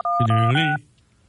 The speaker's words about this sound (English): I think you just wanted to bring up this phone number story just so you could play around on the computer and play the phone tones to different songs.